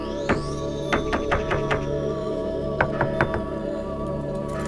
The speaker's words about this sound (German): Sie mussten lange an der Tür klopfen, bis er ihnen öffnete.